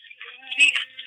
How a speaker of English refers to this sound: Oh, phone again. I'll see what the big solution is. Hang on. Hello.